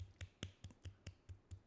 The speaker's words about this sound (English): But at the same time, you get a golf clap.